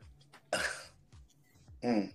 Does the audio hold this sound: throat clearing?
yes